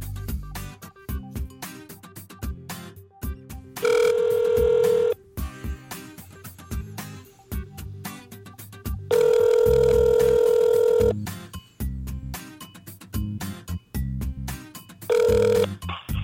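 A telephone rings in three loud, steady bursts spaced several seconds apart, the last one brief, over a busy rhythmic music bed with no talking, as a phone call for an interview is placed.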